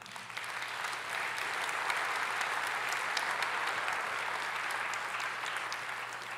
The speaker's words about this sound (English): we have hundreds of volunteers, many of whom are serving us right now behind the scenes. They never come up here on the platform. You don't know who they are, Do we take people for granted? I know we've applauded. Could we applaud them?